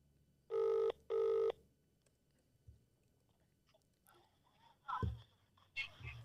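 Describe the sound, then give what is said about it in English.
Two loud, evenly spaced electronic phone rings sound over a speakerphone, each lasting about half a second, followed by quieter rustling and faint clicks. “Phone a friend.”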